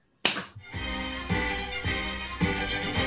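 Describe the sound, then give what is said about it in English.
A single sharp hand clap, made to mark the start of a conversation, rings out loudly from silence, followed by a steady, tonal sound that swells again at regular intervals. No one speaks. “Here, I'm going to clap down and we can just start talking like normal people.”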